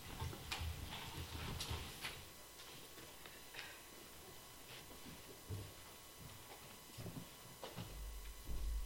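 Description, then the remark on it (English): Faint, steady ticking of a grandfather clock, sharp clicks repeating at a slow, even pace, with no one speaking. “Meditation I chose this morning was the grandfather clock.”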